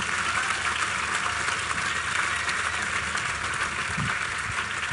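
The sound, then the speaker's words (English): Steady crowd applause welcoming a debut novelist whose novel The Fisherman was longlisted for the Booker, a dense continuous wash of many hands clapping at an even loudness for several seconds, with no voices over it. “And I would like to invite you to thank this debut novelist and welcome him with an applause for that feat.”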